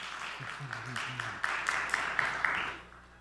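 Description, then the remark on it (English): A crowd claps together in a short burst of applause during a sermon, with a few sharper claps standing out. Brief murmuring voices sit underneath before the clapping fades away. “So see, you can clap.”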